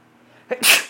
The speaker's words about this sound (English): oh, jeez, I'm about to sneeze.